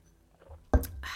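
A quiet sip of coffee from a cup: a soft knock as the mug touches down, then a brief airy slurp. No one speaks.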